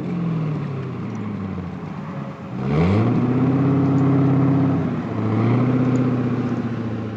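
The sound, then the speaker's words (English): A Kia Stinger car engine revs loudly, its droning pitch climbing in two surges as it accelerates, with a brief dip between them. No voices are heard. “I got your sound clip.”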